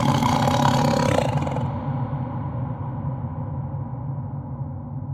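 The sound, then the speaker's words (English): A tiger lets out a deep, rumbling roar that is loud, holding steady for several seconds while its harsher upper edge fades away, leaving a low growl. “So it wants to immediately say, that is a car, that is a tiger.”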